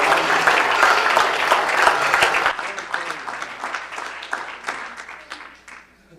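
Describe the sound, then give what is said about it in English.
An audience claps their hands unto the Lord in praise, a dense, loud burst of applause that gradually thins into scattered individual claps before fading out. “Man, oh, clap your hands unto the Lord.”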